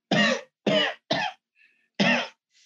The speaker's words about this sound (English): Boise has an attack of a rasping cough as he glares at Cooley